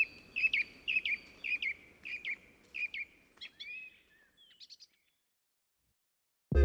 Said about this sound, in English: Anyone who's walked through a forest or just gotten up at sunrise knows that the feathered bunch makes quite a racket.